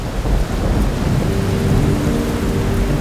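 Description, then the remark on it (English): Heavy rain pours down steadily while thunder rumbles deep and loud beneath it, a dense, continuous roar filling the whole stretch with no voices present. “Sometimes it seems like more than just some rain is falling.”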